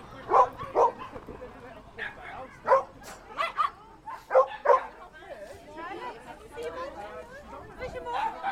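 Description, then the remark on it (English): Several tiny, almost identical white dogs running in all directions bark and yip in sharp, high-pitched bursts, some overlapping, with a few whimpering yelps between the barks. People chatter in the background of a busy outdoor scene. The dogs wear pyjamas to raise money for Matalan's Alder Hey Children's Hospital appeal. “the spectacle of almost identical tiny white dogs running in all directions”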